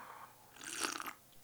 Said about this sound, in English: Sorry, I know some people can't stand the fucking slurping of the coffee. I can't help it. It's hot, you know?